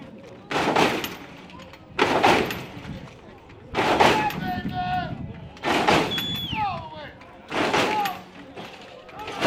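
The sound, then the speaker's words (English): In a car hop at the Pascua-Yaki Arts Festival parking lot, a bright blue boxy car's front end bounces above the crowd's heads and slams back down in heavy, booming thuds, about five in a steady rhythm, while the crowd talks, whoops and whistles between the impacts. “That's the sound of the front end of a car bouncing up above the heads of the crowd and back down.”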